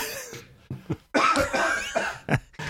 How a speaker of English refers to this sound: for getting through it and holding my cough until now